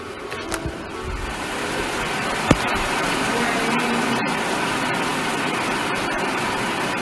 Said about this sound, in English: Oh, that's rain, son. Oh, wow. Damn, it's not like someone's pouring a bucket.